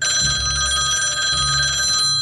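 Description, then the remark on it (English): A nearby old-fashioned telephone bell rings loudly in a steady, rapid metallic trill, with two bursts of ringing separated by a brief pause, heard alone without any talking. “A nearby phonograph rang, and Holloway snatched up the receiver.”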